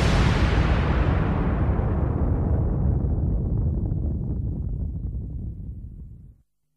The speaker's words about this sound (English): And it was a big explosion. I'm pretty sure, just like with the scaffold and everything like that. Like I'm sure those guys set up that pyro thinking that there would be nobody in that ring and there'd be nobody near these pyros.